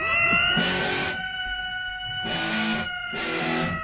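A cat yowls in long wailing cries over a loud, distorted heavy metal guitar riff, with three surging bursts of crunchy chords against sustained droning tones. No one speaks.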